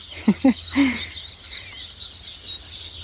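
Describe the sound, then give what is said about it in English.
Birdsong fills an outdoor scene on the North Shore of the Big Lake, Kitchigami, just after a storm has ended: a few low warbling notes near the start over a steady wash of high chirping and twittering from many birds, with a faint low hum beneath. “Immersed in bird song here.”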